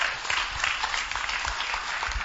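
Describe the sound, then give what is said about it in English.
At a church service, a crowd claps for Jesus, steadily, many hands blending into a dense, continuous patter of applause with no voices standing out above it. “Everybody who is clapping, may the Lord give you $2.”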